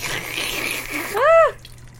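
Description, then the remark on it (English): Dark lager from a can, brewed in Utah, pours steadily into a glass with a fizzy, splashing hiss for about a second, then a brief voiced exclamation rises and falls as the pour tapers off. “And the pour.”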